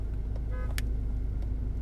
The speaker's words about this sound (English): What the fuck, dude? Why are you honking at...